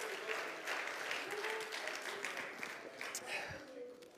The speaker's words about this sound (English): Oh, clap your hands and praise him once again.